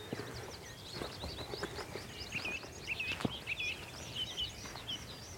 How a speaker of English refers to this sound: That sounds like a meadow pipit just singing from out in the field. Or is it a tree pipit? A tree pipit. Beg your pardon.